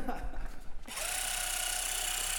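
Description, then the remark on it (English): A Theragun percussive massage gun switches on after a brief burst of talk, settling into a steady, loud motorized buzz with a fast, even pulsing rhythm as it is used on the quads. “The Theragun looks like a power tool with a motor and a chunky handle and a battery pack.”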